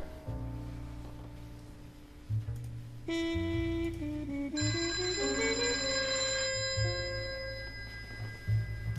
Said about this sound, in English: There's my phone.